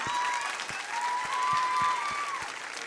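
A crowd applauds steadily, a dense wash of many hands clapping at an even loudness throughout, with a faint voice or whistle-like tone drifting above the noise.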